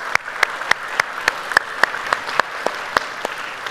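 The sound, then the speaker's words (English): An audience applauds steadily to show appreciation for mothers on Mother's Day, a dense wash of clapping with sharper individual claps popping out at a quick, fairly regular rhythm. No one speaks over it. “If you would, put your hands together and let's show our appreciation for our moms.”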